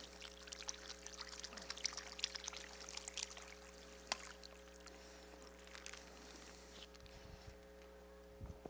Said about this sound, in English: You know, if you dump water in a newspaper, that's not a good plan because it'll normally come right out the bottom.